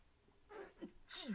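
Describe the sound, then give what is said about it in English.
A single sneeze: a sharp intake building to a bright, breathy burst and a quick trailing exhale, all within about a second. “Notice how we didn't edit out the sneeze.”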